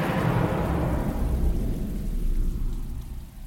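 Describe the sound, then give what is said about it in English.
A deep rumble of thunder rolls beneath steady, hissing rain, loud at first, then slowly fading toward the end, as the closing effect at the end of a song. No voices. “And the ever-present thunderclap and rain ending.”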